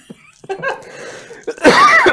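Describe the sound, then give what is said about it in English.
A man's breathy, voiced laughter gives way to a loud, harsh burst of coughing near the end, with no talking. “He needs a cough drop from laughing at himself too hard.”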